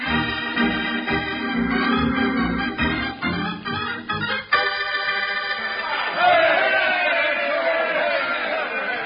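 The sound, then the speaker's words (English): A rowdy crowd clamors steadily, many voices shouting and murmuring together at a fairly loud level, swelling into a louder roar of cheering and calls toward the end. “With that crowd out there, I figure I'll need them a lot worse than a highfalutin speech.”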